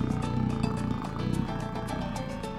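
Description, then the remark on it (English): A cat purrs loudly, a steady low rumble with a gentle rhythmic pulsing that continues throughout, with no voices. “Eliza, you sound like a carburetor.”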